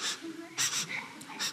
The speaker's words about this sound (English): Always sniff your rock.